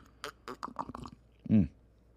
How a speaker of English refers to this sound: we have to slurp